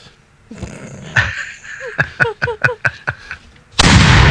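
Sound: cannon firing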